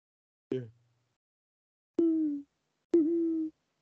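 Three owl hoots ring out with no other sound around them: one short clipped call, then after a pause two longer, steady hoots close together, each clear and fairly loud.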